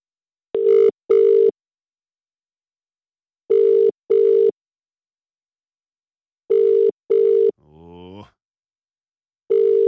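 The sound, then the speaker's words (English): A telephone ringing tone on the line as a call is dialed out to a listener for a big cash prize: paired electronic buzzes repeating about every three seconds, four times, clear and steady, with a brief warbling glide just before the final ring. “Well, you'd better do if your phone's about to ring, because we are dialing now on the cash register.”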